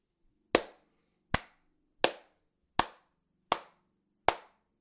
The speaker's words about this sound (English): Come on, everybody, round of applause. Seriously, that is fantastic, okay?